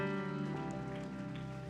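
An audience claps their hands in a steady, dense patter of applause, with sustained musical tones held underneath throughout.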